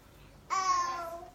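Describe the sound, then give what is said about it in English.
A toddler at home babbles: one high-pitched, drawn-out vocal sound lasting about a second, breaking in after a short stretch of quiet room tone. “this is home with a toddler.”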